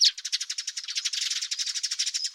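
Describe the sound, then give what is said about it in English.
A bird's rapid trill, a steady run of rattling notes far too quick to count, high-pitched and fairly loud, continuing evenly for a couple of seconds with no voices. “When there are more than about 8 notes per second, individual notes become too fast to count, which we call a trill or rattle, such as this.”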